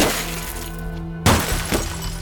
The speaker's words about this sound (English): While he hid inside the Findlutters' house, she bashed in his car windows.